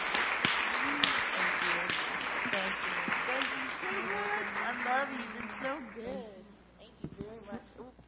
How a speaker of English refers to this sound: Well, you guys, give these ladies a huge round of applause. Thank you.